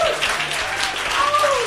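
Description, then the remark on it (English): Steady, moderate, polite clapping from a British audience, a dense even patter of many hands without cheers, with a faint whistle-like tone gliding in the background toward the end. “Thank you very much for a polite British round of applause.”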